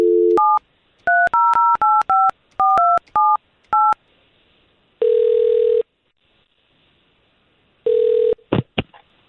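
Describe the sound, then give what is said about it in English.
A quick run of touch-tone keypad beeps dialing a number, followed by a long ringback tone, then another ring cut short by clicks as the line connects. Clear, with no voices. “All right, let's make that phone call then.”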